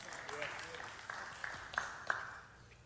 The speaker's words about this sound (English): That was the most pitiful clap I've heard all day.